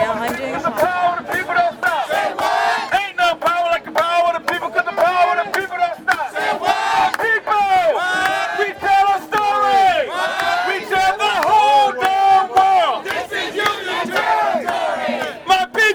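A large crowd cheers and shouts continuously at the Labor Solidarity with Writers March and Rally, a dense wash of many voices yelling and whooping together, loud and sustained throughout with no pauses.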